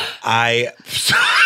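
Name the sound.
surprised gasp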